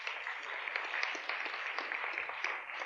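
An audience applauds steadily, many hands clapping together in a dense, continuous patter that holds at an even level for a few seconds, heard from a moderate distance with no voices.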